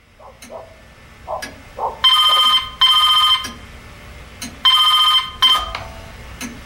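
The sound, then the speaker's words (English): A telephone rings loudly in two double bursts of bright, buzzing electronic trill before an answering machine picks up, with short clicks and faint background noise between the rings. “you've called the Mojo Radio Show. We can't come to the phone right now”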